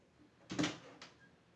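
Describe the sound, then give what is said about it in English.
A door is opened for a visitor with a broad, rustling clunk, followed moments later by a shorter, softer knock as it settles, with nothing else heard but a faint background hush. “Good heavens, who on earth could that be? Sheriff, would you get the door, please?”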